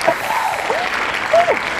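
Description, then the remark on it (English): A clapping sound effect: a burst of crowd applause, a dense, steady wash of many hands clapping, with a couple of rising and falling whistles cutting through over less than two seconds. “Where's the clapping? There we go.”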